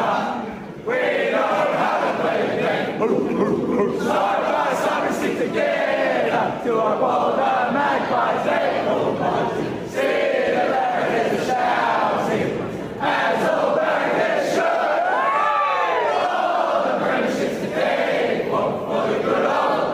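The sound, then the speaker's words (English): A large stadium crowd of mums at the MCG roars and cheers continuously on Mother's Day, answering Collingwood captain Darcy Moore's call after Collingwood's win over GWS. A dense wall of many voices with occasional sharper shouts rising out of the steady din. “Can we please get all the mums to join us? Yeah!”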